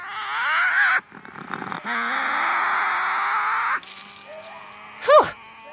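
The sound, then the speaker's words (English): Tasmanian devils squabbling over food: loud, harsh rasping screeches and growls in long bursts, broken by short pauses, ending with a sharp rising yelp. No one speaks. “It's just the noise Tassie devils make when they're arguing with each other over who gets to eat what.”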